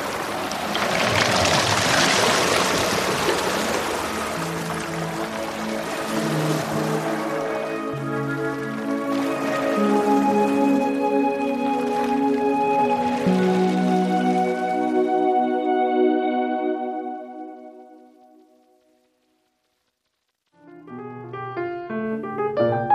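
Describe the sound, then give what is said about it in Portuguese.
A boat rocks around midnight in heavy rain brought by a south wind at a big tide. A wash of water noise gives way to long, drawn-out creaks and groans from the hull that fade to silence, then start again. “Nessas condições, o barco, geralmente à noite, com um vento sul, trazendo chuva e maré grande, balança um bocado e faz sons desse tipo.”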